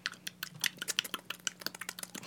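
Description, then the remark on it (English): A quick, irregular run of sharp tongue clicks made with the mouth, about a dozen and a half crisp pops, with no talking. “Just like clicking at these beavers.”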